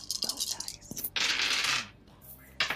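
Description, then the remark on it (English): A few sharp clicks, then a sustained rattle as four bone dice tumble and clatter across a surface, with another brief burst of clatter at the end. “I'm using all bone dice. Yeah, 4 dice here.”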